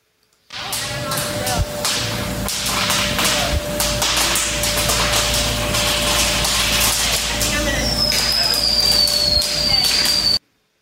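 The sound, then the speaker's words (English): Fireworks go off inside a grocery store after kids set a fire next to them, in a loud barrage of sharp cracks and pops that crackle almost nonstop for about ten seconds, with a shrill whistling streak near the end. “So this is apparently a grocery store with where some kids set a fire next to the fireworks.”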